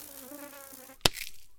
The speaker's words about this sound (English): Don't move. There's a mosquito on the back of your arm.